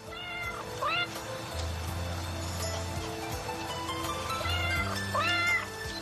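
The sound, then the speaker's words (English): A stock sound-effect cat meows a few times, short rising-and-falling cries spaced apart, fairly loud, over a steady low background hum. “Oh, the other thing we should notice, they only paid for 2 stock cat meows.”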